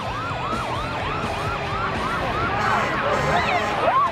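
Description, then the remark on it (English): A fire truck siren yelps in quick, repeating up-and-down sweeps, loud over a low traffic rumble, with the siren tone of a second fire truck weaving in toward the end. “The one fire truck is oh, they got two. They got two.”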